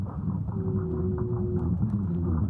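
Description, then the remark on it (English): A blue whale call: a steady, low tonal moan held for over a second above a dense, pulsing rumble of deep underwater noise, with no voices. “Well, actually, I have a blue whale sound I'd like to play.”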